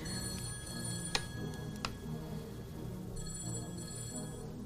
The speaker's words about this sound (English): We got a phone call. I don't know why it's not ringing on the computer. Is that it? No, it's this phone. So I might have to answer it on here. It's a lot of shit ringing.